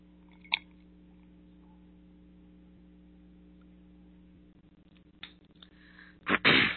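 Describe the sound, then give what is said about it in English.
A low steady hum runs throughout, broken by a small click, a few soft mouth sounds near the end, then a short, breathy slurp as someone sips tea. “I'm going to take a sip of my tea.”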